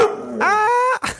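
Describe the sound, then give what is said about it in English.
A dog barks once, a drawn-out, whiny, rising bark followed by a quick, short yip, with no one talking. “Oh, so you're going to let me know how you feel about that one.”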